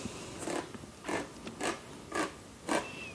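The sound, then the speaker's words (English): A can of beef broth being opened with a hand-crank opener: about five crisp, grinding clicks in a steady rhythm, moderately loud, with no one talking. “1/2 cup of this beef broth. I have to open the can.”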